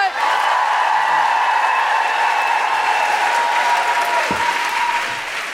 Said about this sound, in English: Geraldine Hickey, everybody! Applause going.